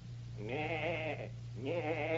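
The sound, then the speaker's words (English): A person imitates a goat's bleat: two wavering, quavering bleats in quick succession, the second cut short, loud over a steady low hum. “I'll bet you can't make a noise as fine as that. I certainly can.”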